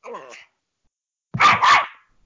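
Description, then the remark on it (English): A short opening bark is followed, after a pause, by two loud, close barks in quick succession from pet dogs right next to the speaker, sharp and bright with no speech over them. “Who's going at it? Oh, my dogs.”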